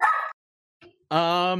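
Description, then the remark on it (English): A person imitates dogs barking in yards at a character for his bones: a short, loud yap, a brief pause, then a longer, drawn-out bark with a strained, howling edge. “I think as I'm going through the yards, dogs are barking at Gritzfeld for his bones.”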